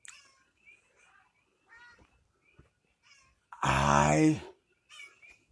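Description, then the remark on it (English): A cat lets out one loud, drawn-out meow lasting under a second, after a stretch of soft, scattered chirps and murmurs, with another faint sound trailing after. “You sitting there, meow?”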